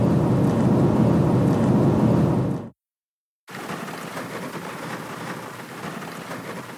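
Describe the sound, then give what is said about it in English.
Heavy rain pours down in a dense, steady roar at a model rocket launch outing, cutting out abruptly for a brief silent gap before resuming slightly lighter and hissier. No one speaks. “Well, I don't know if you can hear this, but it's raining like Jurassic Park.”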